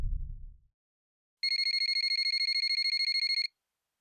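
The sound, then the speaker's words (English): A mobile phone ringtone trills in a fast, steady electronic pulse for about two seconds, bright, after a brief low rumble at the start. No one speaks; the call is left to go to voicemail. “I wake up again to my phone ringing, and once again I let it go to voicemail.”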